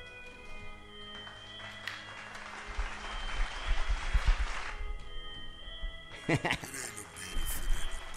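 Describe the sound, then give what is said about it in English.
An audience claps in a dense, crackling wash that swells in the middle and fades, then bursts up again near the end, over a low steady hum of background tones. “Clap for the boy.”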